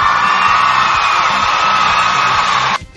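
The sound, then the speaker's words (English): Loud, steady crowd cheering and whooping with applause underneath, a dense wall of voices that holds for nearly three seconds and then cuts off abruptly. “It's because level 99 got married last weekend, so gonna have to give a warm-hearted applause from the guys at Radio Sega!”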